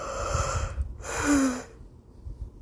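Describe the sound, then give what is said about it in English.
A single yawn: a long breathy intake of air followed by a drawn-out, low voiced exhale that trails off into quiet, with no talking. “Sorry, I can't stop yawning.”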